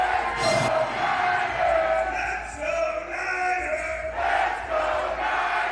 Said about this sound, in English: The faithful showed up and represented out here in downtown San Jose for the 49ers rally. We are cheering on our Niners.